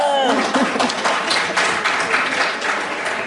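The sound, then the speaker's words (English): An audience applauds steadily, a dense wash of many hands clapping at once, fairly loud, with faint voices and a brief whoop near the start. “Yeah, they just applaud, so I think they're absolutely behind you.”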